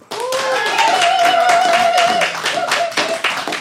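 Audience applause starts abruptly and holds steady, a dense patter of many hands clapping at once, with a few whoops and cheering voices rising over it before it thins out, as the audience votes by applause for one option for a Mars mission.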